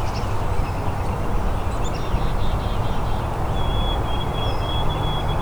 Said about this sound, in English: There's also black-capped chickadees here too.